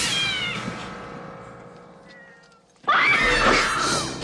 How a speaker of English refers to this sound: Yeah, it sets you off. You say, okay, cat scared me.